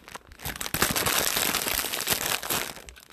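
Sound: fire crackling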